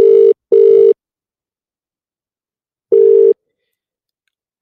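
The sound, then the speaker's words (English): A telephone ringback tone after a number is dialed sounds in a steady electronic double-pulse pattern: two quick beeps, a pause of about two seconds, then the next ring begins. It is loud and clear, with no talking. “Oh, ringing good.”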